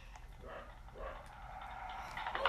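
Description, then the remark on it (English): A dog barks a few times in short, somewhat faint bursts, with a steady low background hum and no talking. “Sorry, my dog is barking.”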